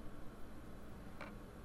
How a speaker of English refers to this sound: That's the sound of like the ice machine and stuff. Air conditioning. There's that. The hotels always have that buzz. It's kind of exhausting.